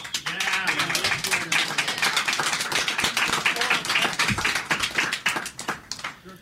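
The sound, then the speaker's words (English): An audience applauds steadily to vote for Star Trek V: The Final Frontier as the worst Star Trek movie, with dense overlapping hand claps that keep up a lively, fairly loud roar for several seconds before starting to thin out toward the end. “I want you to applaud for which one you think is the worst.”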